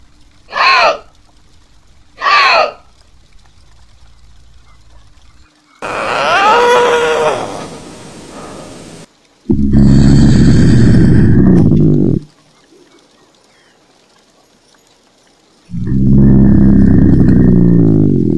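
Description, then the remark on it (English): A Canadian lynx gives two short, sharp yowls, then a long wavering scream and two drawn-out, harsh, guttural moans, loud and alone with pauses of quiet between them. “And then this is what I found for the Canadian lynx.”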